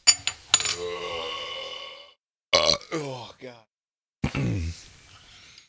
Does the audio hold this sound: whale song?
no